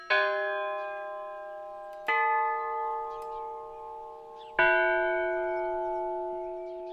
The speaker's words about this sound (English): And it had a bell. And there was a chain. It's just like anybody could come up and pull this chain and ring this bell.